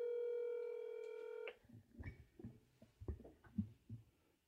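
A phone call to a mother being placed: a steady electronic telephone tone holds for about a second and a half, then gives way to a string of soft, muffled thumps and clicks. No one speaks.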